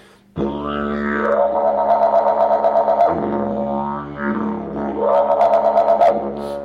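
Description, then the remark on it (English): A loud didgeridoo drone plays continuously, twice swelling into rising, wavering howl-like calls that imitate a dingo, with no voices. “The Aborigines would tell stories with it, imitating the sounds of animals, you know, the dingo.”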